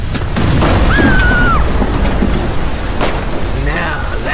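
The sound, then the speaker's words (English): A lightning strike: a loud, sustained thunderous roar with deep rumbling and sharp crackling bursts, plus a brief high whistling tone partway through. “And they say lightning doesn't strike the same place twice. But today, it did.”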